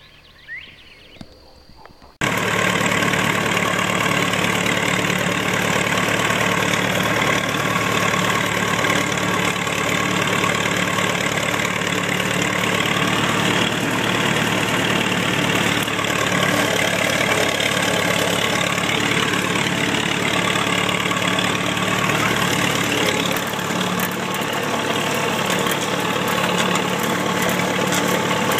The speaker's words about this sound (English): So thanks for watching, and I got a little tractor footage right now for you.